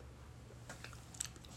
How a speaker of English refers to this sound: Let me sip this smoothie. I just came fresh out the gym, so I'm sipping on a smoothie real quick.